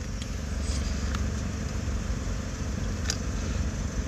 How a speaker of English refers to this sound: How the fuck does I hear this fucking truck start up every single minute?